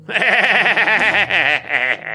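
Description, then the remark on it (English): A voice imitates a goat's bleat as a wild, cackling laugh, loud, with fast wavering vibrato sustained for about two seconds before trailing off in a few shaky pulses. “And he lets out this weird, maniacal, yet goat-like laugh.”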